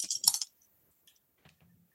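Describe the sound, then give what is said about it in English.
A quick clatter of dice tumbling across a hard surface, a dense run of sharp clicks that fades into a few scattered soft taps as they settle. No voices. “You don't have to mute when you roll because it's nice to get the sounds of the rolling.”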